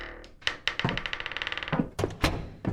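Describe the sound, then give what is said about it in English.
A door being opened: a few solid clunks, a quick rattling run like a latch or handle being worked, then heavier thuds as it swings free. No one speaks. “Ah, here we are. I'll just get the door.”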